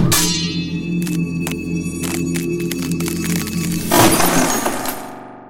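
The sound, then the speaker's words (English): Over a steady low hum, a few sharp cracks snap out, then a steel longsword blade shatters as it meets another blade in a parry, with a loud, bright crash that rings briefly before fading to silence. No voices. “When the blades touched, the steel shattered.”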